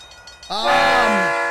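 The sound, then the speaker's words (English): A loud, sustained train horn blares in suddenly after a brief quiet moment, its rich chord holding steady for about a second as a short livestream hype-train alert sound effect. “Oh, shit. We got a hype train. Another one.”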